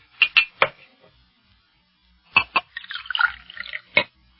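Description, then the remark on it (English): A few sharp clinks of glass, then a short gurgling pour of water into a glass and a final clink, with no talking. “Hey, look, may I have a glass of water if I've got to go into such a lengthy discussion? I'll get you one.”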